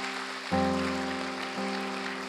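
An audience claps hands in praise to God in a steady, dense wash of applause, and sustained low organ chords come in under it about half a second in.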